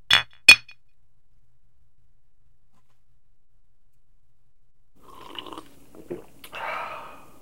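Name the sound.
glasses clinking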